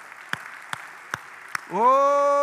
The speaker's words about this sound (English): Let's give the Lord a big clap offering of praise all together. Come on.